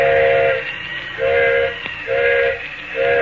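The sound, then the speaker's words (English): A steam locomotive whistle, the engineer signalling for a flagman from a train stopped in the mountains at night, sounds a series of four loud, evenly spaced short blasts, the last cut off, over a steady background hiss of steam and rumble. “Engineer's whistling for a flagman.”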